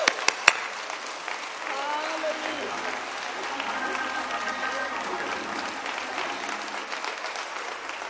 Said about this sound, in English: Come on, let's get the Lord a hand clap.